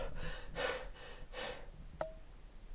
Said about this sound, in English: I'm really breathing heavy.